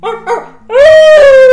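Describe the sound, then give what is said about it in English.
A person imitates a wolf howl, moving their jaw as they do it: two brief yelping notes, then one loud, sustained, steady howl held to the end, with no talking. “Look how she just enunciates her howl.”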